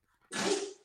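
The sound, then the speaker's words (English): A single sharp sneeze bursts out after a faint intake of breath, loud and explosive for a moment before fading quickly, with no one talking. “Bless you.”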